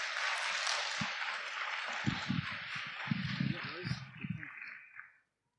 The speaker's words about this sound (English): Can we give our primary contestants a big round of applause?